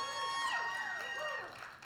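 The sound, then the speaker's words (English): An audience cheers and calls out loudly in response to a morning greeting, many overlapping voices whooping and shouting at once, the burst of noise slowly easing off. “Substantially louder than the 9:30 crowd.”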